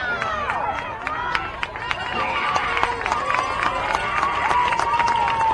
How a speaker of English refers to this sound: Fans on both sides cheering. There's some fingernail chewing going on the Stewart's Creek side too, though.